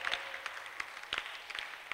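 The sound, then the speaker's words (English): A crowd claps hands in scattered, uneven bursts, thin and fairly soft, with sharp individual claps popping out over a steady patter and no voices. “Your hand clap, it looks very sick. It sounds sick.”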